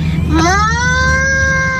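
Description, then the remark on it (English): A child's voice imitates a cow mooing: a single drawn-out, high-pitched call that rises sharply then holds steady for over a second, loud over a low steady hum. “And my impression is a... Yeah? Cow. Cow.”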